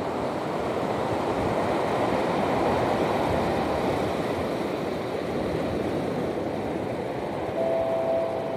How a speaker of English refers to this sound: Marina Del Rey, California. I'm currently standing on the beach. I'm right at the shore as the water's coming in. It's quite a windy day, so you'll probably hear a lot of wind, but hopefully you can also hear the rhythm of the waves as they come in.